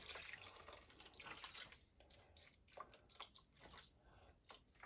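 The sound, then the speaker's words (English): Water pours steadily into a measuring cup, splashing and gurgling with a few brief bursts and pauses, no voices over it. “3 cups of water for me, 2 cups for you guys.”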